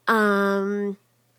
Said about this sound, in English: There's my cat.